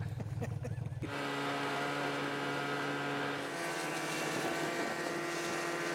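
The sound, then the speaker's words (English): A snowmobile engine revs up after a brief muffled moment, then drones steadily and loudly, holding a constant buzzing pitch as it carries people out onto the ice of Bridge Lake for ice fishing. “He picks us up on the sled, and we go rocking out to the ice.”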